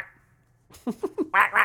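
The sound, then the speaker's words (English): A person imitates a duck with five quick quacks, three short, lower ones followed by two louder, brighter and more nasal ones, after a moment of near silence. “That's not a bad duck impression.”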